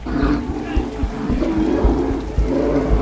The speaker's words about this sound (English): We heard the bear before we saw it. Then it turned the corner following him, and even from a distance, it looked impossibly big. Massive triangle of a head, silverback hump. Just muscle and fur and fat.